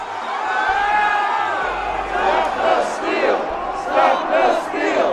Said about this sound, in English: This was an enormous, like, 10,000-person crowd, and they were storming the Capitol.